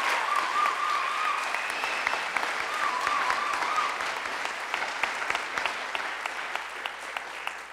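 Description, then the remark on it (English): An audience claps steadily, a dense wash of hand claps with a few sharper slaps standing out, sustained at even loudness for several seconds without a break. “can we have a round of applause for Roger and for Patty?”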